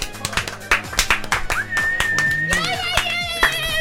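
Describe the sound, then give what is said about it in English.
An audience claps in a quick, uneven patter of sharp hand slaps, with whoops and a whistle-like rising tone mixed in over roughly four seconds of steady applause, the crowd's round of applause judging a shirtless contestant on stage in a show contest. “By a round of applause, what do we think of”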